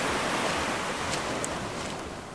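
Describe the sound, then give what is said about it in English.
A steady, hissing wash of surf on a hot tropical island beach, a continuous broad roar with no distinct breaks, easing slightly in loudness toward the end. No voices are heard. “It's not just a beach. This is like a tropical beach.”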